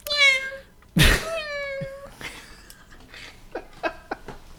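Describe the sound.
A person does a convincing cat imitation: two drawn-out, wavering meows, fairly loud, with a sharp breathy burst between them, then a few softer, shorter sounds trailing off.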